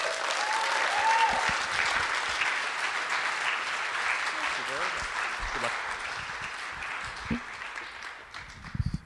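Loud, sustained applause from an audience fills the whole stretch, a dense steady wash of clapping that tapers slightly toward the end, with a few sharper claps near the close.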